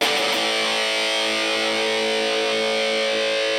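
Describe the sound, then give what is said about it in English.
A loud, heavily distorted electric guitar, played through a 1981 Inventions DRV distortion pedal, rings out in one thick, sustained chord, buzzing and saturated and holding steady for several seconds with no voices. “DRV pedal to that.”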